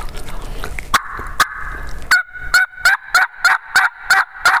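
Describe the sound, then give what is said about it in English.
A series of sharp, rhythmic turkey yelps made on a turkey call to start an engagement with a turkey, about eight evenly spaced raspy notes, fairly loud, with no talking over them. “So I'm just going to yelp a few times.”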